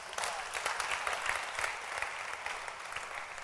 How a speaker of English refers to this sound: Clap your hands for the people again.